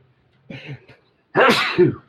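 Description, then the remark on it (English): A voice imitates a sneeze as the sound of a spear flying out of someone's hands: a short, breathy wind-up followed by a loud, forceful burst, all in about two seconds with no other sounds. “He tried to poke it with the spear, and he sneezed”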